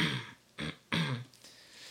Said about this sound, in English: So I do. I was like, let me see if I make any noise. I go, I just clear my throat.